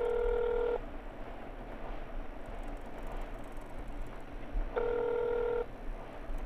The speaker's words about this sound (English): I froze as my phone rang.